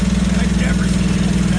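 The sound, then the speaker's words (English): A small engine, like a lawnmower's, powers a machine that shoots out Cheeto-powder snacks. It runs at a steady idle, its loud drone humming evenly with no change in pitch throughout. “It does sound like a so lawnmower.”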